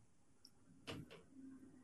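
An old chair creaks: a sharp clunk followed by a second creak, then a low, drawn-out groan. The sounds are fairly quiet, with no talking.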